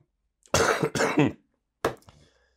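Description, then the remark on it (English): A harsh fit of coughing: two quick, raspy coughs back to back, then a short pause and one more sharp cough trailing off, with no talking. “When I feel that cough about to happen, I got to drink something hot.”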